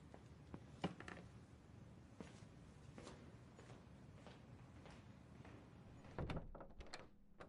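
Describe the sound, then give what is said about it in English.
A door is handled and pulled open for a visitor, with a few knocks and thumps of movement before a louder bump of it swinging wide near the end. “who the heck is at my door?”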